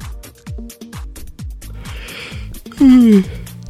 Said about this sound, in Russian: что ты зеваешь? Что ты зеваешь? Да то он и я. Это я была. Я пошутила. Я просто тоже хочу спать.